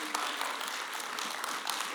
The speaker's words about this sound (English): Someone clap your hands to the Lord this morning.